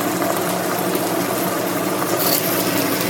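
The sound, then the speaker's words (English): A kitchen exhaust fan runs steadily while onions and rice cook in a pot, a loud, even whooshing drone with a low humming undertone that holds constant throughout, with no voices. “Turn off that fan so you can hear a little more sizzle.”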